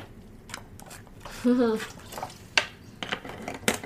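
Sipping water from a glass: wet slurps and swallows, a brief hummed sound in the middle, and a light clink of glassware against a quiet background.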